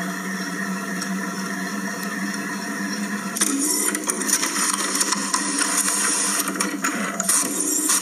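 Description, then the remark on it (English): An office printer whirs steadily, its mechanical hum growing louder and rougher partway through as the machine starts up, with no voices present. “And the printer just starts up.”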